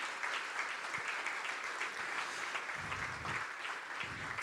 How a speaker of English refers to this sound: Guys, let's give these guys a round of applause. Firstly, this morning, to welcome them to family.